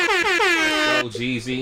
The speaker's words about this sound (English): The whole entire air horn. You know what I mean?